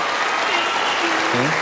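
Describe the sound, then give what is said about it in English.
A crowd applauds for a young boy stepping up to the microphone, a steady, dense wash of clapping that stays loud throughout, with a voice briefly calling out underneath near the end. “How about a round of applause for the young man here?”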